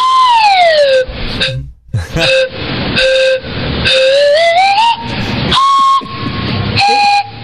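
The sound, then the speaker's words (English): A loud slide whistle blows in a series of bursts, its bright pitch swooping downward, then climbing and holding, with brief gaps between toots. “It's a slide whistle.”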